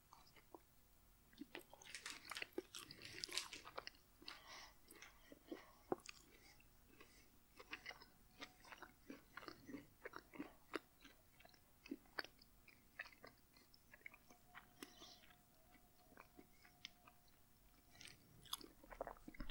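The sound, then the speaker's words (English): Quiet biting and chewing of a Snickers candy bar, with sticky, crunchy mouth sounds repeating irregularly over about twenty seconds and no talking. “I'm going to take a bite of Snickers.”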